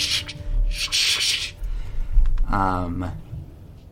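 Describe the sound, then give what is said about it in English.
A big hand paws through many coins in a chest: two bursts of hissing, shuffling scrape lasting about half a second each. A voice then speaks briefly over faint lingering rustles. “Starts pawing his big hand through, and you hear the sound of many, many coins.”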